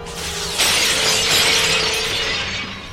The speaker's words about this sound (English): This shatter thing is so dumb.